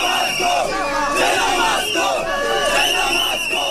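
A large crowd of hundreds of household and electronic goods dealers in Kenya demonstrates in the street against foreign traders, carrying placards and blowing whistles, shouting and chanting together, many raised voices overlapping in a loud, continuous roar with rising and falling yells throughout.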